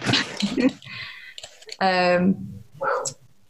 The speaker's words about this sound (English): Dog's barking. So I've got really mouthy staffy and no one's allowed to walk past the house.